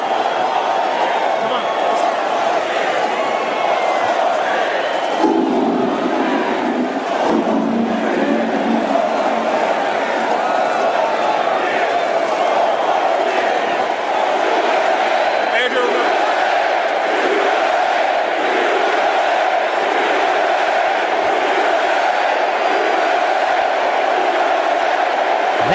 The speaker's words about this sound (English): Anyway, so the president, but he walks on the field holding the first lady's hand just prior to the national anthem. Listen to the thunder of applause and the chanting of four more years and the chanting of USA.